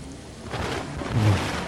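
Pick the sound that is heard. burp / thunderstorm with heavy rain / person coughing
thunderstorm with heavy rain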